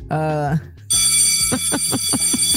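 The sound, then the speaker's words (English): A school bell rings with a loud, bright metallic tone and a rapid, steady clatter of strikes, following a brief voiced sound at the start. “All right, let me ring the school bell real quick.”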